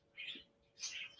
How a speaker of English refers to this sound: I know the birds are chirping. It's mid-afternoon, guys.